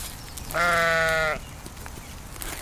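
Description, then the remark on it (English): A single sheep bleats once in a fenced meadow on Vancouver Island, where sheep graze on shrubs and non-native grasses. The call is loud, steady and nasal, lasting under a second, against faint outdoor background noise, with no talking. “Sheep are munching on shrubs and non-native grasses.”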